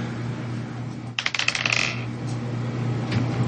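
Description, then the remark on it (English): Damage dice for a tabletop game rattle and tumble across a hard table in a quick burst of clicks lasting about a second, then settle, leaving only a low steady room hum. “This is my actual damage dice, so I don't want to try to roll.”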